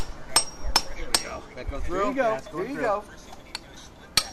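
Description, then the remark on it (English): Sharp, ringing metallic blows of a hammer striking a hatchet to split an animal carcass: three quick strikes, a pause while someone speaks, then two more spaced-out hits, fairly loud. “They're using a hatch. The hammer's not as psycho.”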